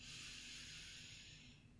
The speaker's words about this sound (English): Let's breathe, taking one in together. And out slowly. Let's take another one. Big breath in.